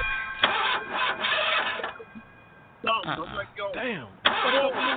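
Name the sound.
car engine being started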